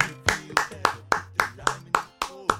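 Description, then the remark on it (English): About nine sharp hand claps ring out in a steady, brisk rhythm, each crisp and evenly spaced, with a faint low tone sustained underneath. “Claps for you, claps for you.”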